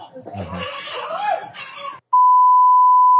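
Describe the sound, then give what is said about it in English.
A loud censor bleep covering a swear word, one steady mid-pitched tone held for about a second, cuts in right after a couple of seconds of a voice talking and laughing. “See, there's some bleeps.”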